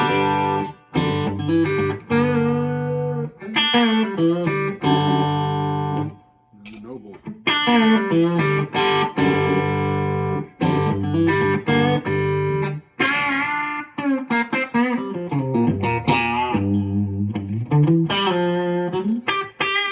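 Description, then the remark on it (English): A clean, dry electric guitar, a Danocaster Blackguard on its bridge pickup (Ron Ellis pickups), played through a Deluxe Reverb tube amp with a Vintage 30 speaker: plucked single notes and bends in a continuous phrase, fairly loud with no talking over it. “So this is my Danocaster Blackguard with Ron Ellis pickups on the bridge pickup. Deluxe reverb with a vintage 30 in it. This is dry.”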